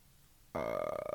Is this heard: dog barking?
no